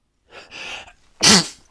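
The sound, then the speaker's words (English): A single loud sneeze: two breathy inhales build up over half a second, then a sharp, explosive burst that trails off quickly. No one speaks. “Bless you.”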